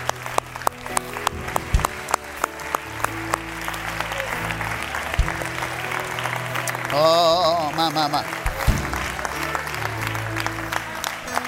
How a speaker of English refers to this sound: Now lift your hands again. After you've clapped them, lift your hands and raise your voice again.